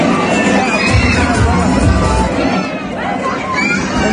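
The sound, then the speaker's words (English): A loud crowd of women shouting all at once, reportedly while playing musical chairs. A dense wall of overlapping voices with occasional higher-pitched yells and cheers holds steady for the whole stretch. “They're playing musical chairs, I heard, or something like that.”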